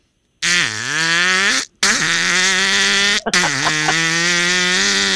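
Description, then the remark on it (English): A person imitates a motorcycle with hand and mouth, producing three loud, buzzing, sputtering bursts with rising and falling pitch like an engine revving, separated by brief pauses. “And that would be the thing where I use my hand and I make the sound like a motorcycle.”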